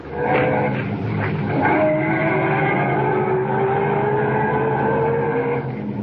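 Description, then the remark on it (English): A car engine runs loudly and steadily, its pitch climbing as the car pulls off and accelerates away up the road, with a rough, rumbling texture throughout and no voices. “Get back in the car and head up the road again.”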